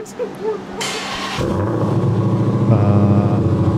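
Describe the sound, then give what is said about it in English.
The big V8 engine of a muscle car, called the most powerful production muscle car ever, cold-starts: a brief whirring crank, then it catches and settles into a loud, deep, throbbing idle that grows stronger. Heavy, with faint voices at the start. “enjoy the incredible sounds from the most powerful production muscle car ever”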